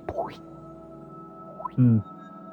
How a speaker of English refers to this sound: And the echoes of the drips.